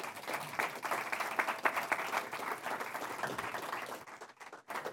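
Sustained audience applause given as a clap offering to the Lord Jesus Christ during a church sermon, a dense wash of many hands clapping steadily at a fairly even loudness, thinning out briefly near the end before resuming.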